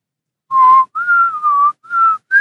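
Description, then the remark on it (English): Loud, piercing audio feedback whistles on the connection in a series of about five steady, high-pitched tones, each lasting a fraction of a second with short gaps, slightly shifting pitch, and no talking. “Oh, that's way too much feedback whistling on this connection.”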